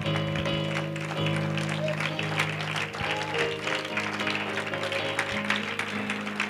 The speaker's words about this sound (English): Amen. Can you put your Bibles down and clap your hands to the Lord?